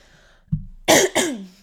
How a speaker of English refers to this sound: All right. Sorry, I had to cough.